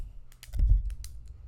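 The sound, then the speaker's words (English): A retractable Pilot G207 gel pen clicked rapidly and repeatedly, about eight sharp clicks in an uneven rhythm over a low background rumble, with no talking. “Just clicking my pen, like.”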